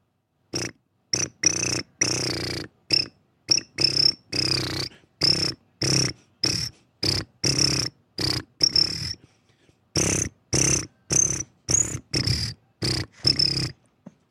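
A cricket band performs a cricket concert piece on K-Nerdist: a series of loud cricket-like chirps in a march-like rhythm, each burst short and separated by brief silences; it sounds like voices imitating crickets rather than real insects.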